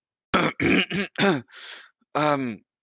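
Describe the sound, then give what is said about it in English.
A voice imitates a sick person: several short, throaty coughing grunts, then a raspy drawn-in breath and a final groaning cough, all loud. “As the magic begins to shore up some of these wounds, you can hear a deep inhale and a kind of a coughing come from this person.”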